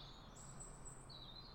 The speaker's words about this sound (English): I'm like, ooh, I can really hear those birds. And they are singing today. They're always singing.